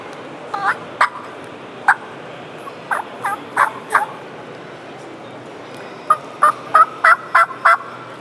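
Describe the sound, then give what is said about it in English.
Soft, spaced turkey yelps from a turkey call, used to locate a gobbler in a new area, given in short clusters of a few notes with pauses between, then a quicker run of yelps near the end; fairly quiet, no talking. “you just don't want to come in and just hammer yelps at them, because that bird may be closer than you think to start”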